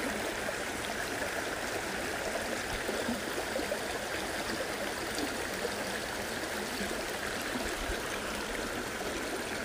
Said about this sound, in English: We're sitting next to a beautiful stream. Can you hear the water flowing over the rocks?